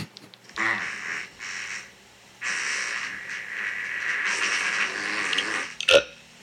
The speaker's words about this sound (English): And I burped at the end. There was a lot of expelling gases right there.